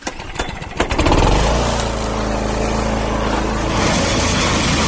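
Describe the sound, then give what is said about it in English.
A lawn mower engine sputters and catches in the first second, then settles into a steady, loud droning hum with a rough mechanical rattle as it is started to cut the grass. No one speaks. “It's time to cut the grass!”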